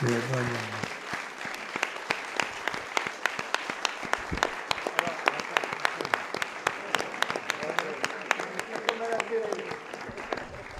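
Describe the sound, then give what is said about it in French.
A crowd applauds steadily for about ten seconds, a dense wash of many hands clapping with sharp individual claps standing out, fairly loud throughout; a voice is heard briefly at the very start. “Vous avez bien raison de m'applaudir.”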